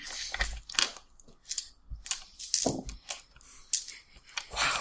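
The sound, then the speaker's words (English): A handful of dice clatter and rattle in repeated sharp bursts for about five seconds, moderately loud, with no one talking over them, as many dice are rolled for an initiative roll in a tabletop game. “David's rolling.”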